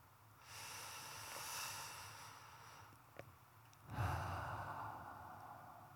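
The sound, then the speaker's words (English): A slow, deep breath drawn in with a soft airy hiss, a brief pause, then a fuller, louder exhale rushing out during a guided breathing exercise, alone with no talking. “I want to invite you to close your eyes and focus on your breathing.”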